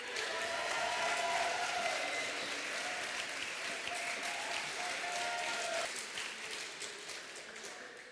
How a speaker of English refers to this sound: And let's not rest our hands too long, because applause is well and truly needed for our next performer